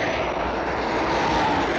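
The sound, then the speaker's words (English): A steady, loud engine drone of an aircraft in flight over the countryside, a broad rushing roar with a low rumbling base and a faint tonal hum, holding constant with no voices. “Aerial shots of aircraft flying from above the aircraft looking down on the countryside.”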